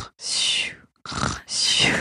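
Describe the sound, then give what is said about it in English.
A person mimics a bear's snoring: three loud, raspy, breathy bursts of roughly half a second each, separated by brief pauses, with a hissy, airy texture. “And they go like this in caves sometimes.”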